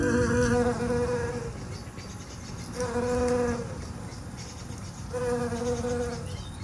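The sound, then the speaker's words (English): A shrill carder bee buzzes among flower beds in three separate bursts, each under a second long, a high-pitched whine that rises and falls between quieter gaps with a steady outdoor hiss behind. “He wants to introduce me to a sound that gets his heart racing when he's out searching for bees.”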